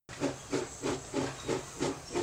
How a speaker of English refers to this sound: But in November of 1935, people were waiting at the depot for the train to arrive, and it was coming from Cleveland and headed to Warren with a payroll on board.